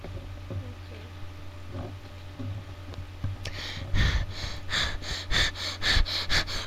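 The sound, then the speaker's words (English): Heavy, rapid breathing right up against the microphone, a run of about eight loud, hissing breaths in steady rhythm after a few seconds of low hum. “Breathing feels so good. Can you hear my breathing?”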